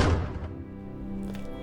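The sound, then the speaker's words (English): A door opens with a heavy, dull thunk at the start, then a low, drawn-out creak and rumble lingers for over a second, with a faint scrape near the end. “His thoughts were interrupted by the door opening, and turning towards it, he saw Father Osbert entering.”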